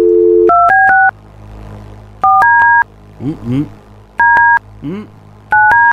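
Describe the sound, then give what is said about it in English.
Touch-tone keypad beeps dial a phone number with many double digits in quick bursts of several dual-tone notes, separated by short pauses in which a voice briefly murmurs. “I picked lots of numbers with doubles today. Oh my god, that took a long time.”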